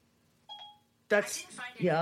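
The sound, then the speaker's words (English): A short two-tone electronic chime sounds once as Siri wakes up after picking up someone yelling, followed after a brief pause by Siri's synthetic-sounding voice beginning to speak in reply. “You're yelling and Siri's yelling back. Yeah, apparently I was yelling loud enough that Siri picked me up.”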